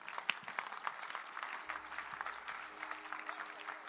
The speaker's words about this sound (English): Clap for Jesus.